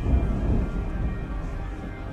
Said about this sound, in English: Watch the sky darken as an unusual storm rolls in and changes the atmosphere.